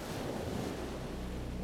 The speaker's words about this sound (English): When spending a day at the ocean, the waves are audible, but you're probably not actively hearing them. After a while, you become desensitized. The waves fade to background noise.